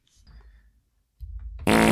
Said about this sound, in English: I'm giving you 2 fart sounds for that guess.